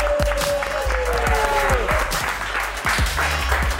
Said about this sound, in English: I think it's a round of applause just for the kit, surely.